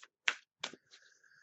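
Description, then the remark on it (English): A deck of tarot cards, The Sacred Traveler deck by Denise Lin, being shuffled, with two or three quick, crisp papery bursts followed by softer rustling and sliding as the cards settle. No one speaks. “Let's shuffle some cards and see what we got.”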